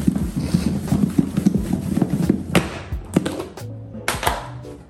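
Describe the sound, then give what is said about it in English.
Catfish pieces being shaken in a lidded container of coating with added lemon pepper and Cajun seasoning: a steady run of quick, muffled thumps and rattles, followed by a few sharper knocks and a quieter pause. “Now, again, make sure the lid is secure, like so. One day, you shake it.”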